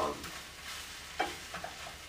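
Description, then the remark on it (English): Onions sizzle steadily in a pan with a broad, hissing crackle, broken by a few sharp scrapes and clinks of a utensil stirring them; they are being cooked with garlic for a meal of rotisserie chicken and rice. “Good onions. I love fucking, I'm making some onions, rotisserie chicken, rice, with some garlic, for flavin'.”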